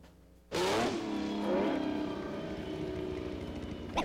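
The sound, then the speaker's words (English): A car engine suddenly roars to life and revs hard, its pitch sweeping up and settling into a steady loud drone in third gear, with no voices over it. “the only thing you can do practically in this car is stay in third gear.”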